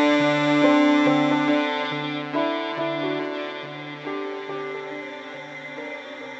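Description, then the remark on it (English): A heavily processed vocal line smears into a dense, sustained wash of reverb, its tones hanging and slowly fading while faint rhythmic pulses repeat underneath. “And turns into like this nice infinite reverb type thing.”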